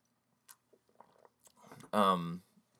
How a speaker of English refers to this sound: And just 1 second while I drink a sip of coffee here.